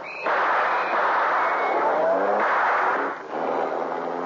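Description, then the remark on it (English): A car speeds off with a loud, steady engine roar and rushing road noise, briefly dipping near the end before surging on again. No one speaks. “I'll stay in the car.”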